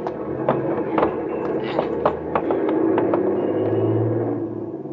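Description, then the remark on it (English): A truck engine rumbles steadily, its low drone swelling and deepening as the truck pulls away at a changing traffic light with boys holding onto it to hitch a ride, with scattered light taps and clanks over the noise. “That truck there looks okay. Yeah, we're just gonna grab onto it.”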